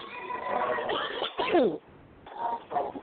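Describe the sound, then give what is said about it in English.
A rough, raspy cough, caused by poor air, erupts in a few harsh bursts, with strained, gravelly breaths between them and a short pause before a final hacking fit. “So don't worry about my cough. It's very rough for some reason.”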